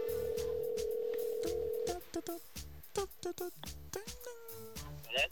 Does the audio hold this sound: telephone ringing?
yes